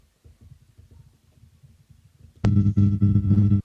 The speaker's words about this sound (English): Oh. Some weird noise. I think it's coming from this side. Is it like a rattling? It was more like static. Yeah, that was weird. Loud static.